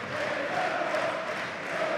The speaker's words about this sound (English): Sunderland fans are clapping him off.